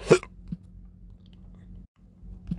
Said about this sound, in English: Gosh, I got the hiccups.